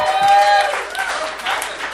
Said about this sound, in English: That is such a pity clap. That's your full feeling?